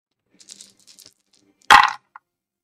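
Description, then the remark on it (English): Light scattered clicks tumble for a moment, then a loud sharp clatter lands and a last small tick follows, as D10 and D8 dice are rolled for damage and settle on a hard table. Nobody speaks. “Yeah, those dice are they sound nice.”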